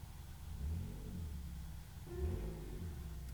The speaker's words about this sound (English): Someone decided to move my car into the driveway next to my room. So all I'm hearing on the mic is my car vrooming.